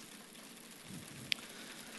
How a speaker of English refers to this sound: I want you to get your pens out and start tapping the chair seat in front of you. Make a rattle noise this morning.